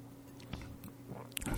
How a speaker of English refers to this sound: I'm going to give it another sip here.